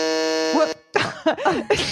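A single harsh, flat electronic game-show buzzer, pressed by a player during a game, blares for under a second, a voice briefly overlapping its end, then a short gap before several people burst into excited talk and laughter.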